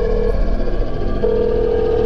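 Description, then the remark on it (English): A telephone number being dialed: a short electronic tone, a pause, then a longer steady tone, heard over a loud, rumbling background with no one speaking. “Let me phone! Keep it away! I'll call now, quickly!”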